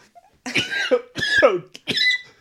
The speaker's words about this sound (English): That's it. Just give yourself a cough.